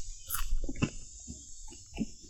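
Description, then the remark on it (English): Crisp crunching as two small fried baby crickets with their back legs removed are chewed, a few sharp crackly bites spaced irregularly over a steady high hiss, with no talking. “Crunchy. It's very crunchy.”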